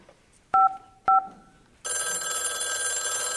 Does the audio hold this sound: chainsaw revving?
no